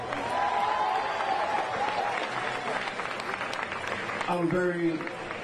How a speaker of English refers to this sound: So please, give him a round of applause.